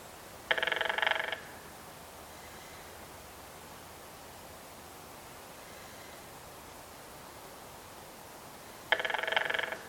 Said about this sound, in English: The drumming of red-headed woodpeckers includes a two-part hammering sound, a staccato roll similar to the downy woodpeckers, with one-second bursts of 19 to 25 beats per second, repeated 2 to 3 times.